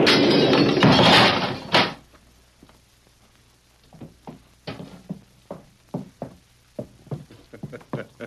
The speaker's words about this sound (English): I reckon that explosion finished him.